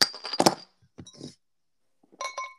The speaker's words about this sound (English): I'm trying to pour mine in the glass right now, and this glass is full. I think I better take a sip out of it.